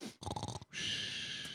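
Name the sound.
person imitating snoring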